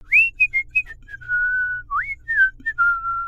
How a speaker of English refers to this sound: George walked out of the square whistling